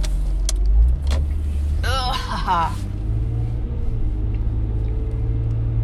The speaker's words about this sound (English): I'm gonna laugh if this is the truck that I was behind earlier. I think it is.